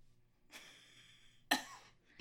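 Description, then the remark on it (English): A breathy intake of air, then a sharp cough from a woman bursts out, followed by a shorter second cough, with no talking. “All right, her response is a cough, so I guess I'll move on.”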